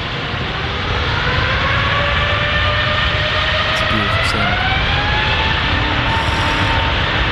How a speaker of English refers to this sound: that, my friends, is a Trent 900, which is one of the engines that you can have fitted onto your Airbus A380